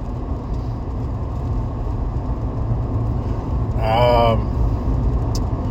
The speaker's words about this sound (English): Sorry about being so noisy. I don't know why my truck's so fucking noisy today. Noisier than usual, but it is, such as it is. Probably because I'm driving with studs on a bare road.